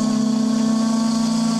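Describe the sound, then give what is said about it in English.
A steam whistle blows one steady, unbroken blast, a loud low-pitched droning tone with a rich buzzy edge that holds at even strength throughout, with no voices. “Yes, steam whistle blowing there.”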